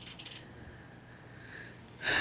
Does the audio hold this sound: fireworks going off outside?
no